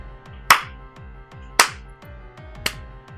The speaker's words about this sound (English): As you start walking, as you guys begin moving towards the smallest one, you just hear a clap, like somebody just...